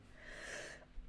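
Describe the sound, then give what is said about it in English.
A single quick sneeze, a breathy, hissing burst that rises and fades in under a second, fairly soft, with no talking around it. “Bless you.”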